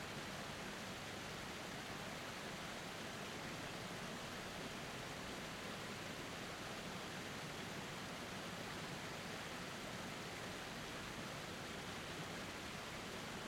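A waterfall pours in a continuous, steady rush of cascading water, a soft, even roar with no breaks or changes and no voices.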